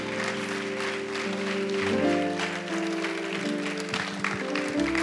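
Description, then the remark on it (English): A church audience claps steadily for several seconds for the Lord Jesus, the dense applause blending with sustained keyboard or organ chords playing underneath. “Clap for the Lord Jesus.”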